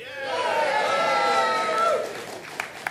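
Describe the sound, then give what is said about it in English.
A crowd cheers, a dense blur of many raised voices that holds steady for about two seconds, then quickly fades, leaving a couple of sharp, isolated claps. “And the crowds rejoiced.”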